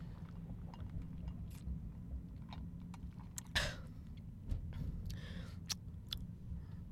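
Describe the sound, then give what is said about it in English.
Slurping first sips of the day of hot coffee, a couple of short airy pulls with small mouth clicks, set against a steady low rumble of a running car; no one speaks. “I'm trying to write it out, but first sip of coffee of the day, here we go.”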